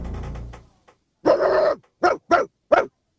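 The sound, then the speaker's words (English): A radio caller from Mildura does a dog impression in a dog impression contest: one long drawn-out howling bark followed by four short, sharp barks in quick succession, loud, after a brief low rumble at the start. “One dog impression each.”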